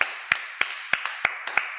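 clapping

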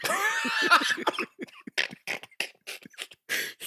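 coughing fit

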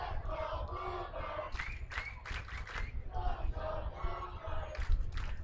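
stadium crowd cheering

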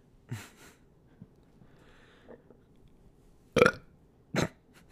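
burp

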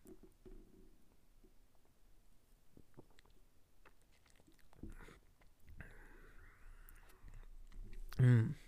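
sipping beer

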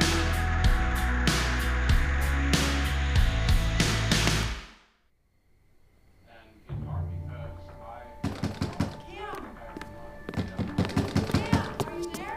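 pounding on a door

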